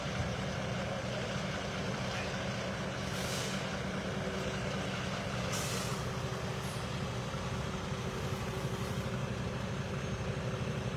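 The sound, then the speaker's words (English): A heavy tow truck engine rumbles steadily, with a couple of short, sharp air-brake hisses cutting through the low drone. No one speaks. “Listen, the tow truck better not block my view.”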